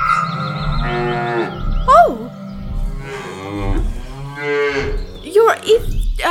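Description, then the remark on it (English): Several cows moo in long, drawn-out overlapping calls, loud, with a brief exclamation from a person near the middle. “He seems to be playing with them like they're figurines.”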